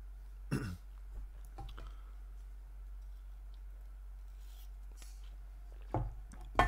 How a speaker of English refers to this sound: Did you hear me slurp there, all you haters? That's for the ASMR nerds. Give you a little ASMR.